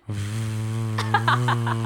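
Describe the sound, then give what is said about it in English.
A voice imitates a loud laptop fan with a steady, low buzzing hum, joined about halfway through by a quick series of breathy, hissing puffs. “And so this kid's late with a loud breathing laptop.”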